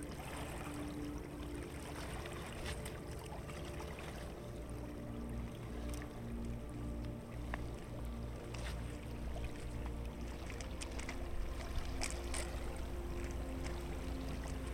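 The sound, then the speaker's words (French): Small lake waves lap steadily against a pebbly shore, a continuous wash of water with faint clicks and trickles, moderately quiet, under a low rumbling background. “Les vagues continuent de se répandre sur les galets sur lesquels vous marchez.”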